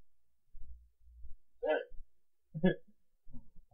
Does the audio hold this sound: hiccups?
yes